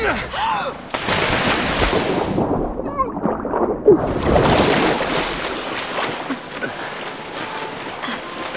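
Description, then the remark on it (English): A ship sinks in a fjord after a plunge into water: loud churning, rushing water and deep rumbling booms, with a brief muffled stretch like being underwater before the roar returns and slowly settles. “I can't believe I've sunk another ship.”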